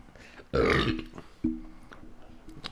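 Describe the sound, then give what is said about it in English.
A loud burp rumbles out for about half a second, followed by a shorter, croaky second belch; no one speaks, just faint background noise. “Dude, my episode burp.”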